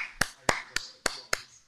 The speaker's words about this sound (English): Clap that up, everybody. Clap her up.